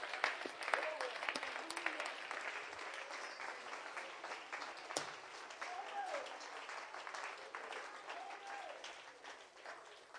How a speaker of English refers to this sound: Let's just clap our hands to the Lord and give him praise and thanks.